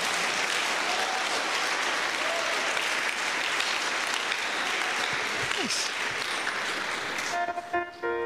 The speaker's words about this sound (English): So why are you not clapping? Por que não estão a bater as palmas?